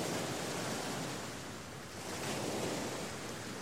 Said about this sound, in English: We'd planned to refill and purify from waterfalls, a no-go in the downpour, and fell asleep to the sound of waves crashing on the beach.